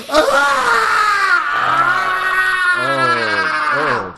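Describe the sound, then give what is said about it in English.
A voice imitates an actress's shrill, sustained screaming and wailing in a film, rising and wavering for about four seconds with no pause, loud, sliding into lower moaning cries near the end. “The bulk of her dialogue is screaming.”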